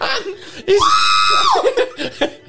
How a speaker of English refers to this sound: Hello, we've heard a complaint of loud screaming from a little girl.